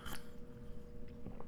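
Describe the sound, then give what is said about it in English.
A quiet morning sip of tea: a short slurp at the start, followed by a few soft, wet mouth clicks and a small swallow. There is no talking. “Oh, tea. Sorry, it's like 8:14 in the morning as I'm recording this.”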